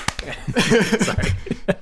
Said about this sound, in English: Sorry. Nobody joined me in the slow clap buildup.